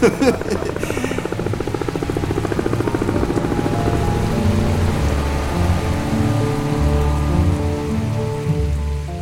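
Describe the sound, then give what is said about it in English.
Heavy, pouring rain falls in a steady, unbroken wash for the whole stretch, fairly loud, with a low sustained drone humming underneath and no voices. “Bob stood there in the pouring rain, his hands full of cigarette butts.”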